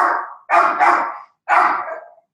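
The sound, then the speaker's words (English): An old dog barks angrily at a UPS delivery in a few loud, rough bursts, two close together and then another after a short pause, with no talking. “Got a dog that's angry in the background.”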